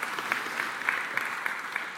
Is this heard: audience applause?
yes